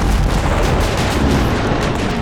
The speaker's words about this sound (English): Kento's men began firing their cannons, but the cannonballs clanked off Bagan's armored skin, doing no more damage to the beast than a heavy rain.